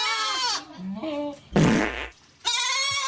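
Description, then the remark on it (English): A Tesla electric car's novelty horn sound, which can also serve as its low-speed pedestrian warning sound, plays: a nasal, wavering goat-like bleat, a short buzzing fart-like blast, then another loud bleat, all in quick succession with no talking. “So this is what these are the sounds that the Tesla will make. That's the horn.”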